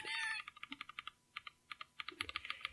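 Crisp, clacky keystrokes from a mechanical keyboard tap out in a quick, uneven rhythm, clear, after a brief high-pitched mewing sound at the start.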